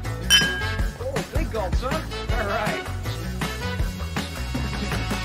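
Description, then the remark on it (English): Glasses clink together in a toast, a bright chime near the start, with music and some voices carrying on loudly underneath. “Here we go. Cheers. Gulp. Cheers.”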